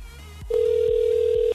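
A phone line rings once for a Virgin Radio prize call to a listener, a steady electronic tone lasting about a second, loud, over a soft low background bed with no talking.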